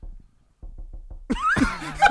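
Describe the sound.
Around seven soft, low knocks tap out an uneven, Morse-code-like rhythm meant to mimic a fart, then loud, bright laughter bursts in and drowns everything out.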